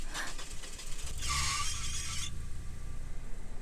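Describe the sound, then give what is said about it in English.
An old, rusty car engine turns over without the key being turned, with a brief, harsh squealing roar, then settles into a steady, low rumbling idle that keeps running. “Now the car... It's just running.”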